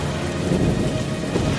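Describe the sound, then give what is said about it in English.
Heavy rain hisses steadily while a deep, low rumble of thunder rolls underneath, the whole storm dense and continuous with no voices. “Bottles and bottles full of thunder and storm ingredients poured away and started to brew and mix, forming such a dark and ominous storm that no one had or ever would see one like it.”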